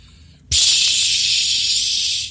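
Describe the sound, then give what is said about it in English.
A disinfectant chamber sprays someone inside it: a loud, steady spraying hiss bursts on abruptly after a half-second of near quiet and holds at constant strength for nearly two seconds, bright and airy, with no voices. “Pindle, you may come into my disinfectant chamber.”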